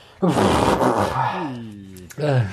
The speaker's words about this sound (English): Oh, I'm going to need to blow my nose.